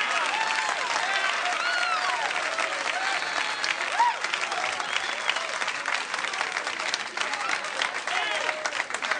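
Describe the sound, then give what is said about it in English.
Sustained audience applause for comedian Kenny Youngman, billed as the king of the one-liners, fills the whole stretch, a dense, steady wash of many hands clapping at an even loudness, with faint cheering voices mixed in and no break. “What a crowd.”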